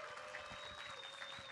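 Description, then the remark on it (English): An audience applauds in a dense, steady wash of clapping that holds at an even level for the whole brief moment, with no one speaking over it. “Round of applause”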